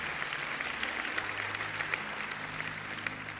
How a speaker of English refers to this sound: Clap your hand.